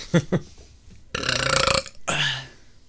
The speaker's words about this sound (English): Uh-oh, that's not a good sign. He's already burping. Mm-hmm. Full belly.